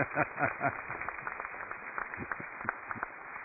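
A crowd stands and claps steadily for a couple together 62 years, a dense, even patter of many hands, with a few brief shouts or cheers mixed in at the start.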